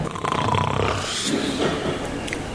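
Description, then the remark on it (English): A person imitates a little snore, as if falling asleep in a prayer meeting, making one drawn-out, raspy, breathy rumble that lasts a couple of seconds at a steady, moderately loud level. “And you're just hoping that nobody else heard that little snore.”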